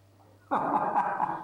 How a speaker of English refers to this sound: Is that your dog in the background